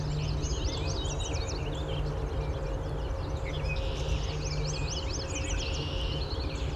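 Red-winged blackbirds call repeatedly among a dense chorus of other birdsong, their trilled and buzzy notes overlapping over a steady low rumble of background noise.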